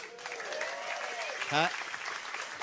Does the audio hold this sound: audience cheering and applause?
yes